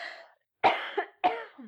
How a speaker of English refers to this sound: Bad time to cough. Oh no. Somebody here needs CPR. I do not. I just... I think I inhaled something. Just a tiny something. It's possible it was a cat hair.